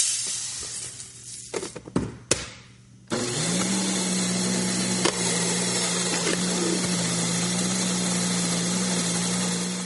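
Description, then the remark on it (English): A mechanical grain mill starts up after a few clunks and settles into a steady, loud grinding whir with a low motor hum, running continuously with a rough, gritty texture. “Luckily, we have mechanical means to do this kind of thing.”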